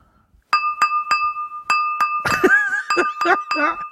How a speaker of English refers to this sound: we'll repeat that example of Jingle Bells. Okay. With spatula and glass.